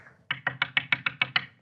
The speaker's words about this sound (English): And they knock on your door.